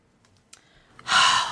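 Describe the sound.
A voice imitates heavy panting for the character Eludra, with one loud, harsh, breathy exhalation, following a moment of near silence with faint clicks.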